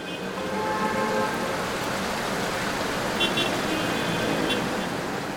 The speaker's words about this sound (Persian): زمستان بود و هوا سرد و بارانی. سارا مدتی طولانی در خیابان منتظر تاکسی ماند، اما خبری نشد.